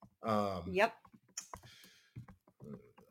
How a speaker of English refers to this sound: I know this is bad podcasting when I'm sitting here typing and not talking.